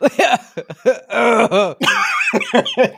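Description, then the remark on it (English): A person coughs and sputters in a rapid series of harsh, strained bursts with throaty, gagging sounds in between, as if choking on something dry, coughing up powder. No words are spoken. “You start like coughing powder, like.”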